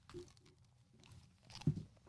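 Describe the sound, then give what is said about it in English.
Crisp crunching and chewing of a cookie, with a few repeated bites and one louder crunch near the end, heard alone without talking. “It's a really good cookie. Really good crunch.”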